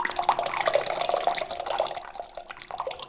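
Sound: running water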